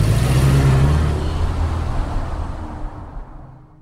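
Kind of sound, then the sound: vehicle, car accelerating away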